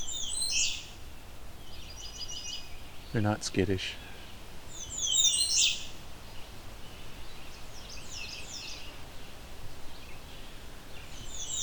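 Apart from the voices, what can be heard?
warbler song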